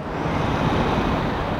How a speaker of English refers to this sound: As cars whiz by on the freeway above Chicano Park